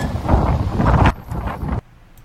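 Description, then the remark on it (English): Loud, blustery wind roars and buffets in a low rumbling rush, easing briefly before a second gust, then cutting off abruptly to near quiet. No one speaks. “Oh my gosh, it's windy here, but I'm glad we don't have those snow chunks in it.”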